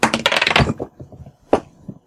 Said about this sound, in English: I dropped my dice. Don't do that. That's not good. There it is.